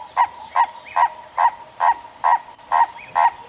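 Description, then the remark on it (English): A lourie (turaco) squawks happily as it settles in a coral tree on a spring day: eight harsh, evenly spaced croaks in a steady rhythm, clear over a faint, constant high background hiss, with no voices. “Rock, rock, rock, rock, rock! He squawked happily as he settled in a coral tree.”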